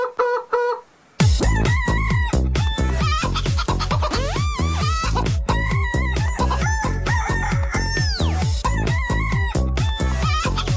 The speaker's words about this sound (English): you're going to get the chicken song.